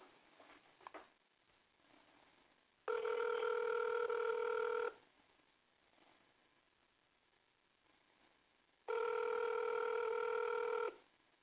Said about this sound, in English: It's gonna be good. Let's see. It's ringing.